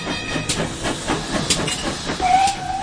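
A steam locomotive at Didcot Railway Centre during a Family Fun Day hisses steadily with a broad, rushing wash of steam, punctuated by short bursts and clanks, and a faint whistle-like tone rising near the end. No one speaks.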